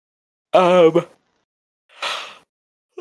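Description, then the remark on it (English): A single yawn: a drawn-out voiced groan that wavers and falls in pitch, then a soft breathy exhale a moment later, with no talking. “Sorry, I'm yawning.”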